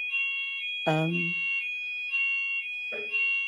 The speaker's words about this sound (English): We're wondering if this is actually a real fire alarm.